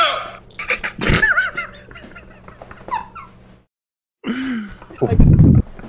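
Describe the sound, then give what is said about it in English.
A short, low, buzzy vowel-like drone from an artificial vocal tract, a 3D-printed recreation of the mouth and vocal cords of the ancient Egyptian mummy Nessie Amun using a fake larynx, heard after a burst of high squeaky, warbling sounds and a brief silence, ending in a rough, noisy rasp. “scientists kept saying, were able to mimic Nessie Amun's voice by recreating his mouth and vocal cords with a 3D printer.”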